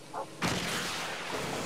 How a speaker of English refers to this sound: Oh, my God. Look, we fired a missile ourselves.